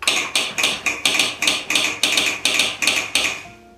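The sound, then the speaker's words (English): Telegraph sounder clacking out a railroad dispatcher's message in Morse code for the operator to copy: about eleven sharp, bright metallic clicks in an uneven rhythm of short and longer gaps, with no voices, ending in a brief ringing fade. “Morse code. The operator would copy it. He would send it back to be confirmed.”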